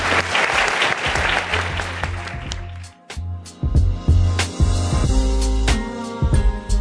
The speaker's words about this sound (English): Thank you all so much for being part of this. Please give a big round of applause for our panelists.